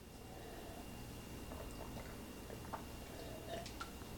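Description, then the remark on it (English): Quiet sips of tap water during a taste test, with faint slurping and wet mouth sounds, a few soft swallows toward the end, over a low steady background hum with no talking. “So each one, I will do a little taste test because I think that's going to tell you a lot.”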